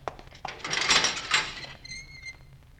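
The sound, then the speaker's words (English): A heavy chamber door swings open with a long, grinding scrape that swells and fades, ending in a brief high-pitched hinge squeal. Fairly loud, with no voices. “But hold, here is the chamber door. Let it be opened.”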